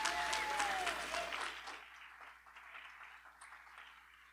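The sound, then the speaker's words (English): An audience breaks into dense, loud clapping with a rising whoop of cheering at the start, then the applause gradually thins and fades to a softer, scattered patter. “If you're encouraged, but knowing that God covered you and God loves you and you receive it today, raise your hand, make some noise, clap, put your hands together and let God know.”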